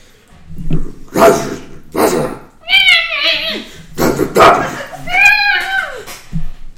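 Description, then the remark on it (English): A human voice imitates a bear-like creature's short, rough barking growls alternating with a kobold's two drawn-out, wavering high whining squeals, fairly loud with no other sounds. “That comment, you know, some like barking growl of this bear-like creature. And the whining squeal of the kobold.”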